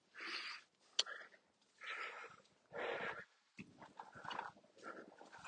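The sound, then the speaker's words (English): Breathy snuffles and rustling from a molting female dog shifting about, in several short bursts as chunks of loose fur are pulled off her, with no talking. “Come here, let me get that. There we go. Molting a bit, this dog.”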